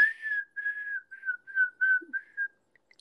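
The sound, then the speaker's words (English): A person whistles a bird-like call: a string of about seven short, steady high notes in a loose rhythm, each holding one pitch, with a couple of faint chirps trailing off at the end. “I love bird watching and just listening to the birds because they have crazy sounds. Like, remember that one that's like.”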